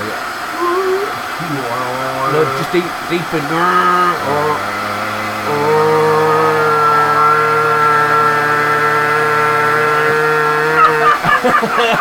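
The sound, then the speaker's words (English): A Hoover vacuum cleaner motor hums, its pitch wavering in the first few seconds before settling into a steady, loud whine, with a person briefly speaking over it. “So we're going to turn the Hoover on.”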